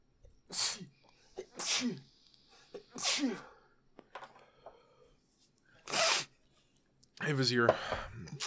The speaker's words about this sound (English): I'm going to sneeze again.